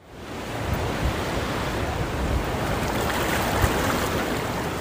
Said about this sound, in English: Welcome to Hermosa Beach, right on the sand near the waves.